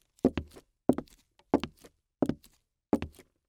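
Five heavy footsteps at a steady walking pace approaching a basement, each landing as a dull double thud of heel then toe, with quiet between steps and no voices.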